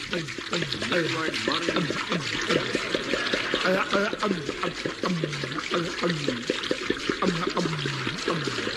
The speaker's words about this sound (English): I will preserve him in pure alcohol. What? Now hold him down. Put this funnel in his mouth. Pass me that 5-gallon jar of alcohol. Taking precaution. Pouring it in.